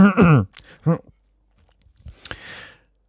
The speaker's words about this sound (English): I've got a throat bubble. I've got a throat bubble. I try swallowing. Hang on.